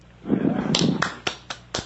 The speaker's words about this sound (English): It's just my hand clapping. Yeah, it's just clapping his hand.